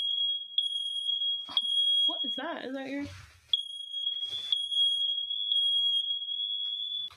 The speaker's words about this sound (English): Well, that was a first. That was the fire alarms, your smoke detectors, yeah.